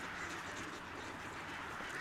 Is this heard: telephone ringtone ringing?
no